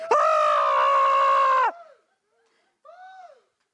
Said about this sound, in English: They're more yelling. What's he doing? The crazy man, he's talking.